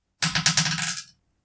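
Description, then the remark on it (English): Dice clatter and tumble across a hard tabletop for about a second, a quick run of bright rattling clicks that fade out as they settle, rolled for a perception check in a tabletop role-playing game. No voices. “Okay, and I'm gonna roll perception for the guard.”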